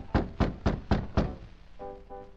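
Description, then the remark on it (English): Five firm, evenly spaced knocks on a wooden office door in a nightclub, resonant, then a brief faint muffled tonal sound in the background as the knocking stops. “Jimmy Edmonds opened his office door in response to Allen's knock.”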